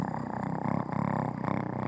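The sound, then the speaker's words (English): A voice imitates a kitten's purr: a steady, low rumbling motor sound with a quick fluttering pulse, carrying on for about two seconds without a break. “And I love those little motor purrs.”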